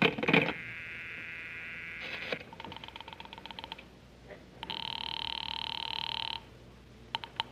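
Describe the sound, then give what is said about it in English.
A telephone line rings through a handset during a call to the operator to report a phone that is out of order, with a steady electronic ring tone repeating in long bursts, preceded by clicks of dialing and no voices. “I better call the operator.”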